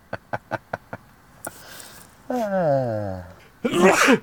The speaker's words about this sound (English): Bless you. Thank you. That one came out of nowhere.